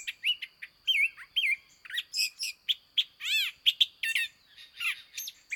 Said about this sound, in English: We amble down the trail through the woods, soon coming across a long-billed thrasher, singing excitedly from the top of a brushy shrub. He doesn't seem to mind us watching him from just 20 feet away.